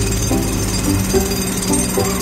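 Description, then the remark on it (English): A loud, continuous jackhammer pounds as someone drills into the ground, its rapid mechanical hammering steady and harsh throughout with no voices. “Someone is drilling into the ground, and it's so noisy.”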